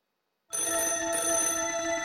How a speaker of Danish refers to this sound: Telefonen ringer. Det er min søster. Jeg holder vejret og sidder helt stille og venter til telefonen har ringet ud.